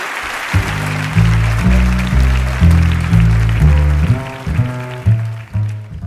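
A crowd claps in a steady, dense round of applause for KAWS at the end of an evening conversation, while a loud, rhythmic music track with deep bass notes plays over it, the clapping fading out near the end.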